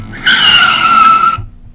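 A loud screech of car tires skidding under hard braking, a single shrill squeal lasting just over a second before cutting off, followed by low rumble.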